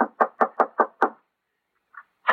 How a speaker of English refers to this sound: Hey, Curtin, this must be the house where the old prospector lives. Yeah, knock on the door.